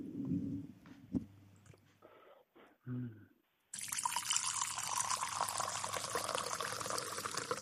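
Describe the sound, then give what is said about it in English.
A few brief clinks and handling noises, then Merlot wine pours steadily for about four seconds, a continuous splashing gurgle with no one talking. “I'm going to pour. Here, listen.”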